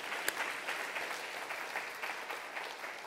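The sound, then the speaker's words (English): An audience claps steadily for about three seconds as a clap offering to the Lord, a dense, even wash of many hands with one sharper clap near the start, with no voices over it. “Can you say amen and give the Lord a clap offering today?”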